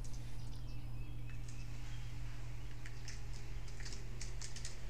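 Soft, irregular clicks of typing on a computer keyboard, recorded on a phone from about six inches away, picking up in a quicker burst toward the end, over a steady low electrical hum. No one speaks.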